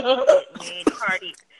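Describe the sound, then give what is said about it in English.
Someone lets out a strange tangled noise, a hiccup, burp and cough all jumbled together in a couple of short, throaty bursts amid voiced vocal sounds. “And you just made hiccup and burp and cough at the same time.”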